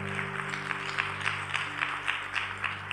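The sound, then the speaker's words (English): A church crowd applauds its senior pastors steadily for the full few seconds, a dense wash of clapping at moderate volume with a faint low hum beneath and no one speaking. “Can we just give Tyler and Rachel a quick round of applause?”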